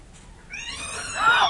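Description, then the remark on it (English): A startled kitten lets out a single drawn-out meow, fairly loud, rising in pitch and growing sharper toward the end, with no talking. “You ever seen the expression on a cat's face when it's startled?”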